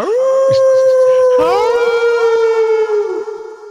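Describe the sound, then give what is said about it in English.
A loud, sustained wolf howl holds a steady pitch for about three seconds, then sags and fades, with reverberating echoes layering over it partway through. “I'll put a bunch of echo on that.”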